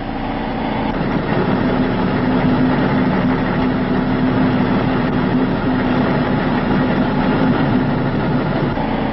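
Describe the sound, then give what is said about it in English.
A truck engine runs steadily at operating RPM, a constant loud mechanical drone with a sustained low hum and no change in pitch, while a sprocket is marked to count its revolutions. Nobody speaks. “Then bring the truck's engine up to operating RPM and mark the sprocket so you can easily count the number of revolutions.”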